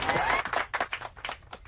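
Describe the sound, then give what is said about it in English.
A brief burst of applause edited into a recording, dense and noisy at first with a faint rising whistle, then thinning out into scattered, uneven claps over less than two seconds. “Edited in some major applause there”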